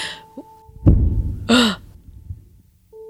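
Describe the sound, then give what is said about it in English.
A dull low thud is followed by a sharp, breathy intake of air, like a startled gasp, fairly loud over a faint steady hum. “After the shocked gasps die down, the invocation continues along those lines, with the typical two thumps for yes, one for no scheme.”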